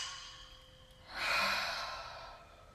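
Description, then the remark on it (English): A soft, breathy deep intake of breath followed by a louder, drawn-out open-mouthed "haa" exhale that pushes all the air out of the lungs, airy, heard alone with no talking. “But first, I want you to take another deep breath in and exhale with a ha. Getting all of the air out of your lungs.”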